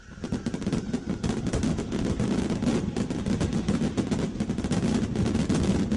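A dense, nonstop barrage of fireworks crackling and popping, with rapid overlapping bangs and a low rumble underneath, loud and sustained throughout with no voices.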